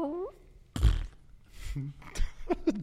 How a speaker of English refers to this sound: What was that? Just hear that bowl sounding fart. Just. I should not laugh that hard at that.